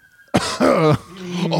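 A person performs an exaggerated, theatrical sitcom-style cough, a few harsh throaty bursts in quick succession, loud, like a stock comedic cough.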